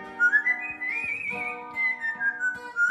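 A parrot named Tico sings a slow, high whistled melody of a well-known song tune that glides up and down, while his owner plays steady plucked notes on a guitar underneath. No one speaks.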